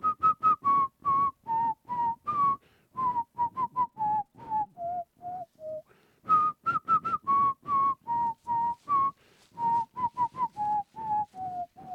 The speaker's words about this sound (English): All right, get to the whistling.